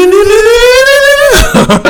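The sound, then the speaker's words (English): A voice imitates the flashback transition sound effect music from the show Saved by the Bell: one loud, siren-like tone glides steadily upward for over a second, then falls away into a few short, breathy bursts. “that's the sound effect music from Saved by the Bell.”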